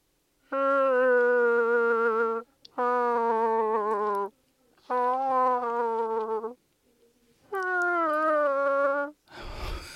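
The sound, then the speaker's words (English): An Alexa smart speaker, asked to talk like Chewbacca, imitates a growling creature: four long, buzzy, wavering moans with short pauses between them, loud and steady, then a brief rough noise burst at the end. “Alexa, talk like Chewbacca.”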